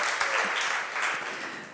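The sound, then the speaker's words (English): An audience bursts into steady, dense applause with some cheering mixed in, holding at a fairly even level for just under two seconds. “Let's cheer for Ryan.”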